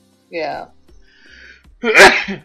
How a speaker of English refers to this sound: Didn't you sneeze? Yeah. Well, it's spring and it's windy, so it's hay fever season. I'll claim that anyway.